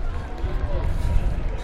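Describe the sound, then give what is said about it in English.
A crowd cheering for local people crossing a race's halfway point: a steady, dense wash of mixed voices and shouts with a rumbling low end, holding at an even loudness throughout without clear breaks. “There's cheering for these local people crossing the halfway point.”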